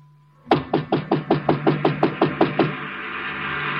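A rapid, steady run of about a dozen sharp knocks on the door of Chinook's, a closed little restaurant. The knocks are fairly loud and last a couple of seconds before giving way to a quiet background hum.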